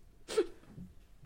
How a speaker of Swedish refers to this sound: ursäkta jag hicka och rapa